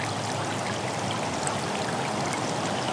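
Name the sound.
waterfall rushing water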